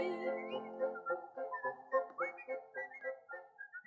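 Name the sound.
human whistling imitating birdsong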